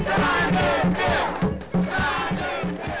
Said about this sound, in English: There's a crowd of about 50 gathered in front of Governor Cuomo's office near Grand Central Station. It's a mix of advocates, legislators, and formerly incarcerated people, as well as their loved ones.